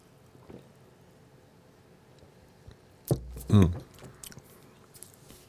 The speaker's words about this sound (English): Mm. Whoa, that's a lot of flavor in a sip of coffee.